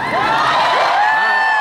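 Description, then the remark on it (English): A crowd in Kansas City cheers loudly and steadily, a dense wash of overlapping shouts and whoops with individual voices rising and falling in pitch over the roar. “What a reception. What a crowd.”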